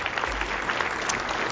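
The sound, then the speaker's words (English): An audience applauds together as a thank-you offering to the Lord, a dense, steady wash of many hands clapping at even loudness throughout, with no voices standing out. “In Jesus' name, would you just give the Lord a little applause, a thank you offering?”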